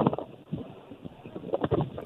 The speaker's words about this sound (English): Although a little windy there.